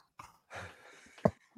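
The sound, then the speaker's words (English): Heavy, noisy breathing of a person while shopping: a short breath, then a long drawn-out exhale, followed by a sharp gasping intake and a soft final puff. No words are spoken. “You just heard my breathing the whole time.”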